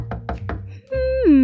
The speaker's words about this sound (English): Little Hedgehog, I believe the knocking is coming from elsewhere in the burrow. I believe it may be coming from your bedroom.